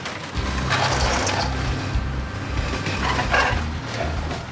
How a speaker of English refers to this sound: A giant mechanical claw, like the one inside the game you always lose at in the arcade. It takes a flattened car and puts it on a conveyor belt to get ripped into pieces.